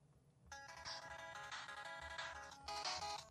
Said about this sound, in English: Hey, I got a new phone ringtone. I didn't get that one, no. But mine is mine's all 8-bitty.